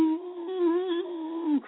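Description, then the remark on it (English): A single drawn-out, mournful howl of pain, imitating a dog, voiced by a person: one steady wavering tone held for over a second, then sliding down as it fades, fairly loud. “and on the porch there's a old farmer sitting in a rocking chair, and his dog is sitting next to him just howling in pain.”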